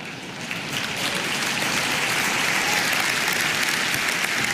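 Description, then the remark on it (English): An audience in Finland applauds steadily in response to a speaker's remark, a dense wash of many hands clapping at once that holds at an even, fairly loud level for several seconds without any voices. “But the reason you laughed and clapped is because you know it's not.”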